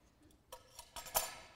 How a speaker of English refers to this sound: I get out the gold color. This is the Christmas cutlery.